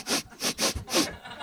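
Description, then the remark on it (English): A person mimics an eyeless ghost child sniffing someone out, with four quick, breathy, hissing inhales in an uneven rhythm, the last one slightly longer, followed by a faint trailing breath. “So they just have to sniff for you, you know?”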